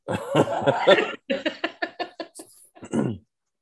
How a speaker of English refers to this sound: He's currently in my bedroom right now. Yep. He just coughed.